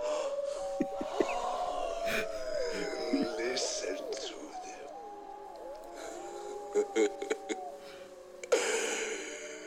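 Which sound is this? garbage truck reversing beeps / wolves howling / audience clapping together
wolves howling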